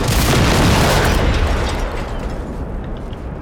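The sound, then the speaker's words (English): A massive, loud explosion in a video game erupts with a broad roaring blast, then rumbles and slowly decays into a lingering low boom over a few seconds, with no one speaking. “A massive explosion?”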